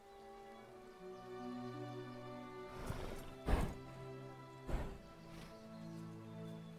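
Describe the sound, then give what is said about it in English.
A horse gallops during a ride, its heavy hoofbeats thudding past in a few loud impacts over a steady bed of sustained musical tones, with no voices. “That seems like a pretty good ride.”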